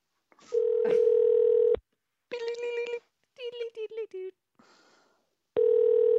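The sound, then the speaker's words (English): A voice imitates a rotary phone pulse dialing: a steady humming dial tone, a quick series of choppy pulse-like bursts, a short hiss, then the droning tone returns. It's fairly loud, with no other talking. “Been working on my impression of a rotary phone pulse dialing, and it goes gross.”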